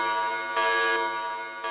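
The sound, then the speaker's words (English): A loud, harsh electronic alarm buzzer blares steadily in the Fantastic Four's Baxter Building, signalling a call to action; its droning tone pulses slightly louder in bursts, with no voices over it. “That alarm means a call to action.”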